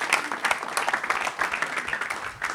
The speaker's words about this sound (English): Let's give her a clap. Thank you. You're amazing. Let's give her another clap.